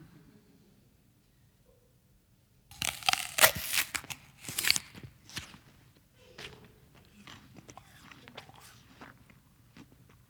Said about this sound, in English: I don't know how well this sound is going to come across, but I want you to hear the sound of me biting into this apple.